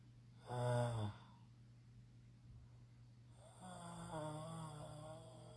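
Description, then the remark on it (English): Two drawn-out snores from someone dozing off, the first short and harsh with a rattling buzz, the second longer and softer, separated by a quiet pause with a steady low hum underneath. “Oh, God, am I snoring? Oh, God, no, no. No, I heard it. Oh, no. I snore.”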